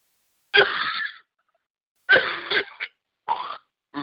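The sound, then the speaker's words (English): A run of sneezes, four sharp, breathy bursts separated by short pauses, the last ones quicker and choppier, with no talking in between. “Bless you.”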